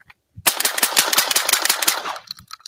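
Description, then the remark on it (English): A long, rapid burst of gunfire through a silencer: dozens of sharp, loud cracks fired in quick succession for about a second and a half, then a short fading tail. No voices. “Here's the silencer.”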